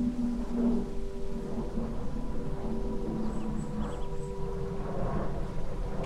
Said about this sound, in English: Notice the sound of the plane flying above.